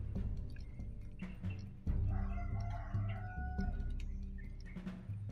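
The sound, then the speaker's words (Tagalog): Chickens cluck in a busy barnyard while a rooster lets out a drawn-out crow partway through, all over a steady rumble of background noise with no voices. “Isa, duha, tulo, upat, lima, asa man ang ikaunom din ng manok?”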